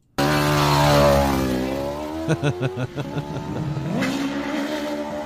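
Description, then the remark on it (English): Small go-kart engines whine and rev, their pitch sliding up and down, with a stretch of choppy, sputtering bursts midway before the motors climb again. No one speaks. “Do you have go-karts as a kid?”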